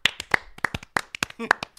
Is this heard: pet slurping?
no